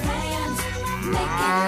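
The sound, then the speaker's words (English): A loud, drawn-out cow moo with a wavering pitch sits right on top of an upbeat pop song, briefly drowning out the singing. “Can you tell us which lyrics are missing from under the moo of the cow?”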